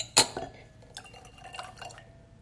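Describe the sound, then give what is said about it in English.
A drink is poured into a glass, opening with a bright clink, then a short trickle of liquid splashing and filling, moderately quiet, with no voices. “Fill my glass first.”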